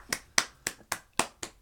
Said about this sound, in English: Clap.